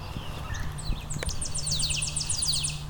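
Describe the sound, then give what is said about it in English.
A Tennessee warbler sings a high, thin series of rapid notes that starts hesitantly and then speeds into a dry trill, heard over a steady low rumble of background noise. “I've got a Tennessee warbler in front of me.”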